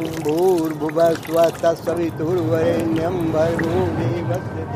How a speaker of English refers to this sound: And now, we will be pouring Ganga water.